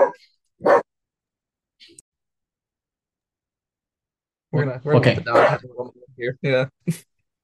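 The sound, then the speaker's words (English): A dog lets out two short, sharp barks, then after a pause breaks into a busier burst of barking and yelping. “I want to know what kind of dog you have.”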